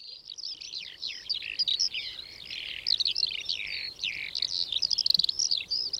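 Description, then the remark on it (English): A busy chorus of birds chirping nonstop, high, rapid tweets overlapping one another with no voices present. “Radio is one of the quintessential tools of modernity, and in Lightning Birds, I want to repurpose its history so that another world becomes audible, the world of the avian aerosphere.”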